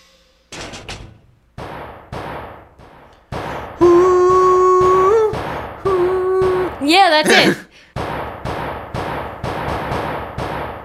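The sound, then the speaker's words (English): A car chase sound effect: a run of sharp bangs and thuds, a sustained tonal whine, then a wavering high screech before more heavy impacts. A voice speaks briefly over it. “Car chase.”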